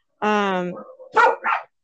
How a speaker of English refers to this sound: Yeah. Okay, hold on. These dogs are barking. Get out. Get out. Get out,